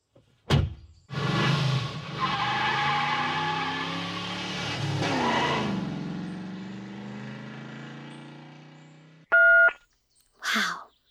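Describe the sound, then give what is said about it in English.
A car engine hums steadily and winds down as the vehicle slows to a stop at the side of the road, then a short electronic chime beeps and a door thuds shut as someone gets out of the car. “That sounds like someone stopped at the side of the road. And got out of the car.”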